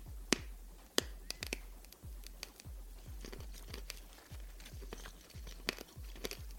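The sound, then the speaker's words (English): Sharp crunches of a brittle orange Necco candy wafer being bitten and chewed, a rapid series of crisp cracks with a steady rhythm and no talking. “It's not really that hard to crunch. It may sound like it's very violent, but they break very easily and you eat away.”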